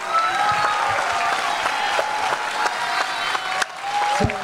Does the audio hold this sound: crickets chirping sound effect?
no